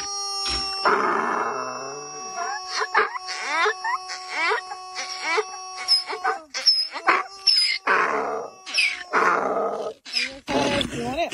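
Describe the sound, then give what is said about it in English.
A squeezed blue rubber screaming chicken toy, received in the mail from New York, lets out a series of strained, wailing squawks in uneven bursts, some drawn out and others short and choppy, loud against a faint steady hum. “Blue screaming chicken.”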